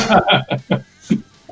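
A person coughs in a quick run of about four harsh bursts, then one more cough after a short pause, fairly loud.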